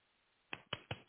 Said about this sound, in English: I see you clapping.